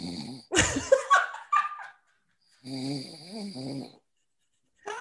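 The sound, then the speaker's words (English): Loud, rough snoring with no talking from a person asleep during a 5 a.m. group call: a sharp snorting burst, then a long rumbling, wavering snore after a pause, and the start of another right at the end. “Straight up snoring on your 5 a.m. sound.”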